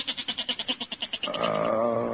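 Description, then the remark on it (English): A goat bleats loudly: a fast, stuttering series of pulses that smooths into a sustained, wavering baa. No one speaks. “Oh, listen to that goat, Peg. He's been baaing all night.”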